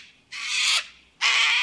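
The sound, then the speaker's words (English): Two loud, raspy screeches from a large bird ring out, each about half a second long with a short pause between them. No one is talking. “And some large birds.”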